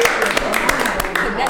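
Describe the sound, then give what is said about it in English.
Scattered hand claps from a few people, several sharp irregular smacks over a steady backdrop of crowd chatter and voices. “Clap it up.”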